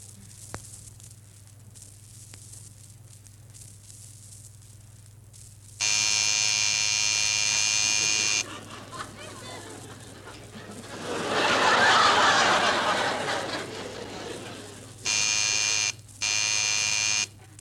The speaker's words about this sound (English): you're snoring. I thought that was you.